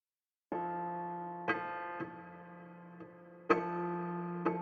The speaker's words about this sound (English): Tick, tick, tick, tock. The clock does not stop.